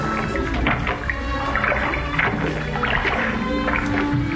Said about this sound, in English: Row a short way out into the bay, Peter, and there anchor the boat. Yes, Master. James! Matthew, John, yes. The four of us will row.